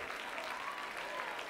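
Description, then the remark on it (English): A church audience claps and shouts to God in a steady, dense wash of applause, with a few raised voices cheering faintly through the sustained clapping. “Why don't you clap your hands and shout unto God with the voice of triumph?”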